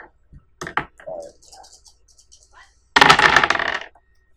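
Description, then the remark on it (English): Dice clatter: a few scattered light clicks, then a loud, dense rattle lasting about a second as they tumble across a hard surface and settle, rolled as three positive and two negative dice in a tabletop role-playing game. “Let's have some different dice for this.”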